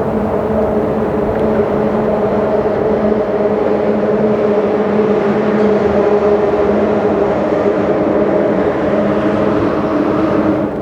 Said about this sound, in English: Calm and chaotic. Calm when it's just the water, and chaotic when the cars pass by the bridge.